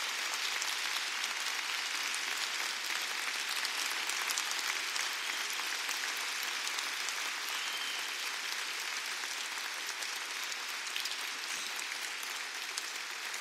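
Sustained audience applause, a dense steady patter of many hands clapping at an even level for the whole stretch, with no voices standing out.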